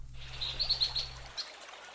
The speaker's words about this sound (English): And up next, a bird that would rather be heard than seen is today's featured feathered friend,